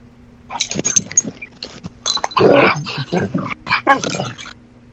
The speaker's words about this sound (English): What was that? Oh, a dog got in here.